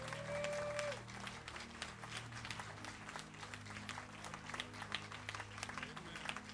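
An audience claps together as a clap offering for God the Holy Spirit, a dense, sustained wave of applause, steady and loud throughout, with a low musical hum and a brief tonal note early on beneath the clapping.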